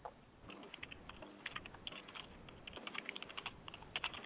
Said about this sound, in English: Sorry if you can hear me typing, but...